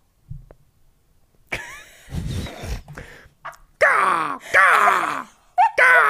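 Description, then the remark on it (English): A person imitates a crow with three loud, harsh caws, each sliding down in pitch, after a stretch of low rumbling and shuffling noise. “Give me another bird. A raven. A crow. A crow?”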